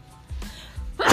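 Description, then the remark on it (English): A single sneeze, a short intake of breath followed by a sudden loud, breathy burst at the very end, unaccompanied by speech. “Bless you.”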